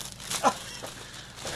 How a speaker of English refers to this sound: I have some old birthday balloons in here, and the cats are chewing on the ribbons.